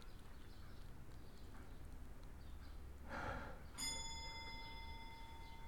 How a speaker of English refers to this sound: That's just the long case clock. I'll wait till it finishes chiming. He might use the chiming as cover to move across the creaking floor. That was five chimes. Which means it's 5 o'clock.